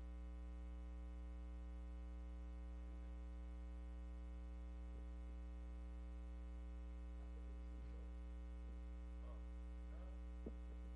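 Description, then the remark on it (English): A steady electrical mains hum drones throughout, with strong low tones and a stack of even harmonics, plus a faint hiss and a few tiny clicks; no one speaks. “It's humming, though.”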